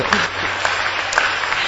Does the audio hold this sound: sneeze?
no